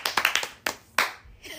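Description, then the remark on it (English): A quick burst of hand claps, about five in rapid succession, then two more spaced-out sharp claps, each crisp and fairly loud, with a faint voice starting at the end. “That clap was so anyways.”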